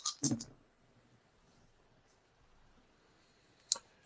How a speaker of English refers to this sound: Okay, I'll roll this many dice.